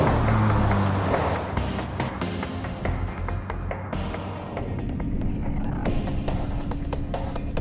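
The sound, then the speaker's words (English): A bus rolls along a road toward Harbortown, its engine droning low and steady under a constant rumble, with occasional rattles and creaks from the cabin. No one speaks. “Silas and Steve are riding the bus to Harbortown.”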